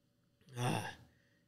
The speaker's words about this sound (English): As I'm coughing?